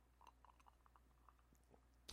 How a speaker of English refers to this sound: I'm going to take a second and take a sip of this here.